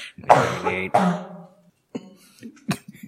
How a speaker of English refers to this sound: Yeah, I'm probably going to cough some, so I apologize. Belch fest. Ooh, we can do cough fest